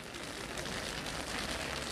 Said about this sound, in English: It starts to rain and people unfold their umbrellas.